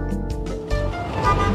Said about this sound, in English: This is the busy corner of 2nd Avenue in New York. Cars, cabs and buses whiz past three young people